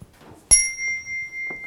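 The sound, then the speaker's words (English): A single meditation bell is struck once, giving a sharp metallic strike followed by a clear, sustained ringing tone that slowly fades, with faint room noise and murmurs around it; the bell calls a group into silence for meditation. “Okay, so let's take, this will be our bell calling us”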